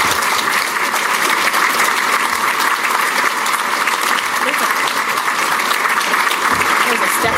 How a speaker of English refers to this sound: Without further ado, can we have a round of applause for Commissioner Jamie?